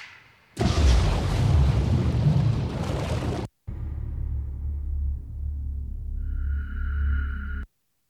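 A starting gunshot rings out as a single loud, booming blast that holds for a few seconds, then a low rumbling echo lingers with a faint steady tone. No one speaks.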